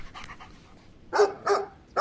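A dog pants, its quick breaths soft at first, then rising into three louder, rhythmic huffs near the end. No one speaks.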